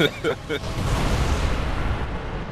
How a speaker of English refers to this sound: Boom. Oh, that's not good. That is a big explosion. Uh-oh. And it's getting bigger and bigger.